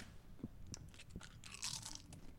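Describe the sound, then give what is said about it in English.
Crisp crunching of a potato chip being bitten and chewed, with several sharp cracks followed by a burst of brittle, crackly chewing noise; no talking. “And I'll have the chip.”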